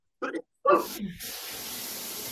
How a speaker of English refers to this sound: This is the shower.